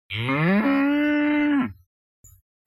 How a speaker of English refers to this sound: Wow. Smart cow.